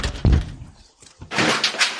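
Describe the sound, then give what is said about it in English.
A heavy knock by sheriff's deputies thuds against a door, followed by a moment of quiet and then a stretch of rough, hissing noise. “Why are they knocking? They're still knocking.”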